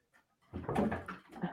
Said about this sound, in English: The hell was that? Wow, my dog nearly fell down the stairs. Bless her heart.